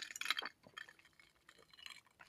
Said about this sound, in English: I lost my train of thought. Let me take a little sip of my coffee.